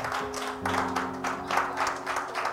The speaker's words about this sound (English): She deserves some accolades. Amen. Please, for the husband, please clap for your wives.